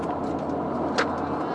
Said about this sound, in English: Traffic is crazy today.